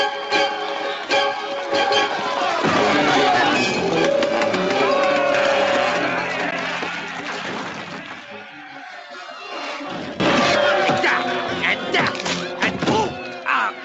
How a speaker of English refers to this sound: Enough talk. It's smashing time.